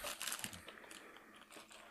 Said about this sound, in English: I've been eating your country club crackers because you're so rich you can afford crackers just for the club.